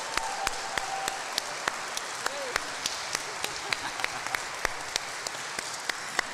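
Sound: audience applause and cheers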